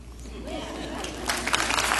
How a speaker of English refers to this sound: Here he's begging for a clap. Shameless man.